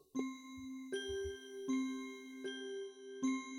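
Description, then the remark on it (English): A small bell rings five times in a steady, even rhythm, each clear strike sustaining a bright, shimmering tone into the next, heard alone with a few faint low knocks. “A candle. A flask. A dark book. A little bell.”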